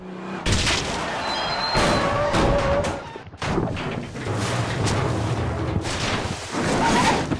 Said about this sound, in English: Bill Burr runs over an animal in a road, crashes the truck, and medical toxic goo goes dripping into the river where there just happens to be some fucking beavers.